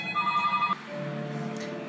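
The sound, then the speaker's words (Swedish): Several telephones ring together in a dense, overlapping electronic trill. One ringtone cuts off partway through while another keeps sounding steadily, moderately loud, with no talking. “Nu ringer alla telefoner samtidigt.”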